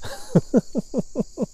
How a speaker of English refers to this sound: And just being outside with just, you know, a few bug sounds like cricket sounds, it just feels like I need to talk quieter today.